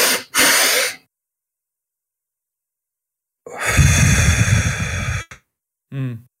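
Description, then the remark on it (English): A person demonstrates a physiological sigh: two quick, sharp breaths in through the nose, a pause, then one long, loud, breathy exhale through the mouth lasting about double the inhale. A brief voiced sound follows. “that physiologic sigh breath”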